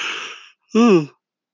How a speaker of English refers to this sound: Pardon me, a yawn jumped on me.